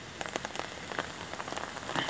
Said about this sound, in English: Here comes that wind blowing the rain out of the trees.